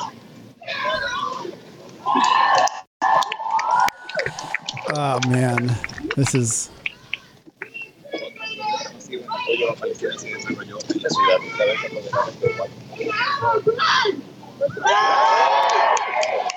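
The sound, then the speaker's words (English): A dense crowd at a rally for Palestine in New York City shouts and chants throughout, loud, with raised voices overlapping in bursts while a person talks briefly over the din. “RALLY FOR PALESTINE Live in NYC”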